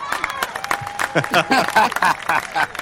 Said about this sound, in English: That's a fake crowd, just by the way, because we're all about authenticity here. That's on YouTube. What do you mean fake crowd? It's a mean fake stadium crowd sound effect.